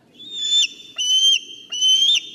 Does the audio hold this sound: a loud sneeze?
no